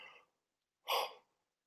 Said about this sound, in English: Excuse me, that is not good, is it? Just yawning on screen. Oh, sorry.